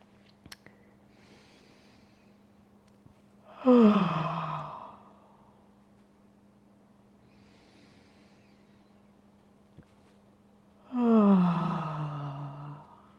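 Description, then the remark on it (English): Two long, deliberate yawns, each a drawn-out voiced exhale sliding downward in pitch, separated by several seconds of quiet with a steady low hum in the background, done as a vagus nerve yawn exercise in a yoga pose: an inhale, an exhale, then a yawn. “And in this pose, we're going to practice something called the vagus nerve yawn. So you're going to inhale. Exhale. Yawn.”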